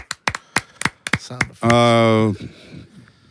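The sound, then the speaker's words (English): Six or so sharp hand claps ring out at an uneven pace as applause for a performer after his performance, followed by a loud, sustained cheering whoop from a voice before things quiet down. “Clap it up one time”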